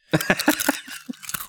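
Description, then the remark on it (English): Loud crunching of tortilla chips eaten right against the microphone: a quick run of sharp, brittle crunches, then a few softer chewing crunches, with no talking. “So if I eat tortilla chips directly into the mic, is that going to help your views?”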